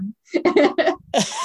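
A sneeze: a few quick voiced, breathy catches build up, then a loud, hissy burst finishes it off. No one talks over it.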